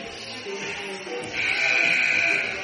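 A hockey arena buzzer at the Faribault Ice Arena sounds one long, steady, fairly high-pitched blast lasting about a second, telling the teams they are done preparing the ice, rising over a constant background murmur of crowd noise.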